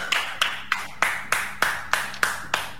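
A single person claps their hands in a steady, even rhythm, about three claps per second, around ten sharp claps in all. The claps are moderately loud, with no voices.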